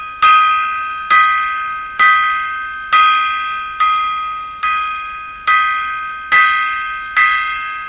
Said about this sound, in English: There we go. There's our 10 gong salute to Mr. Bob Barker of The Price is Right.